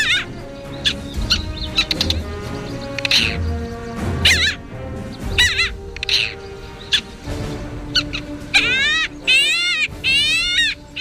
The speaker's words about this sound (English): The parasitic Jaeger is a member of the Skua family.